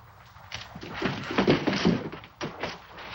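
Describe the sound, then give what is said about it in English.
A door swings shut with a heavy thunk, followed by a series of mechanical clunks and clicks as it locks, fairly loud, with no voices. “he locked us in.”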